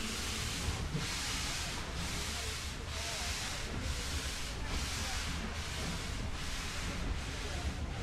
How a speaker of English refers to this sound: I've just made it. Just caught the train in time. It's absolutely packed as we pull out of Alresford Station. It's a beautiful late December morning. The train's full of service people and their families.